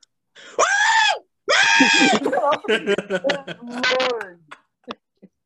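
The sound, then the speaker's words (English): A person vocally imitates a strange, bleating scream unlike a regular scream: two long, strained wails followed by a stuttering run of shorter yelps and cries, loud, with no other talking. “Yeah, but basically the scream is not like a regular scream. It's like...”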